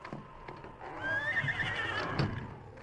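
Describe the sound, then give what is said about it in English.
A horse whinnies loudly for about a second in a barn, its high wavering call rising and falling, with faint shuffling and stamping underneath. “We'll look at the horses.”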